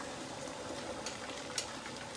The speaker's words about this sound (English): So, give it a nice stir now with the water. And it's already boiling because we just added boiling water.